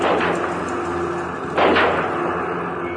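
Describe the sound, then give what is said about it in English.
A single gunshot cracks out midway through a steady, noisy background hum, its report briefly lingering before the drone carries on unchanged. The gunshots rang out as the Kennedy motorcade passed the Texas School Book Depository at almost 12:30 p.m. “as the Kennedy motorcade passed the Texas School Book Depository, and gunshots rang out.”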